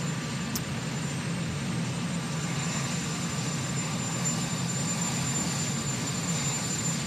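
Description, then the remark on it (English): A steady, heavy engine drone of an idling helicopter as a man walks to it with a Marine in front of him, a deep rumble with a faint high turbine whine, holding constant for several seconds with no voices. “Let's go to, he's walking to the helicopter, and he's got a Marine in front of him, and this happens.”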